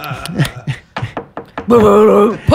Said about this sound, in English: I'm in the room next door. Just knocked 3 times.